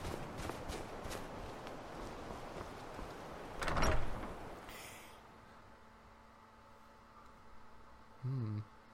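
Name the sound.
sliding door opening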